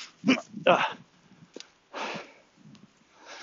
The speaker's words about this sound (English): Right. Where was I before I was rudely interrupted by a dog with a stick that's too big?